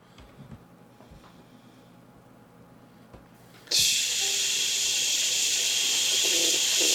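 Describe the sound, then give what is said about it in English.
A steady, bright burst of radio static hiss, heard while trying to reach Commander Hober on an ice planet, switches on abruptly partway through and continues loudly to the end, following a quieter stretch of low background rumble and faint sounds. “Well, it's just static.”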